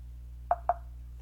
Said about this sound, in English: It sounds like you're knocking on us.